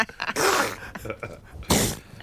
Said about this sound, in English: What is it this time, then? It is seals sneezing. No way. Listen to that.